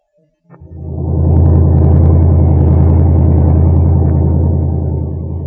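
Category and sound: vehicle, car driving away fast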